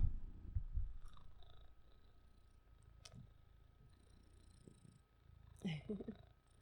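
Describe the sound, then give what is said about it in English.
A male cat purrs in a low, steady rumble, louder at the start and near the end, with a few faint rustles and brief quiet sounds in between. “He's a purr machine.”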